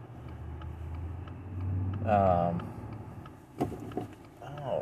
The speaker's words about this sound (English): What is going on? Sorry, I've got people in traffic who don't know what they're doing.